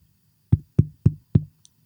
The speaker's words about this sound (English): Knock politely like this.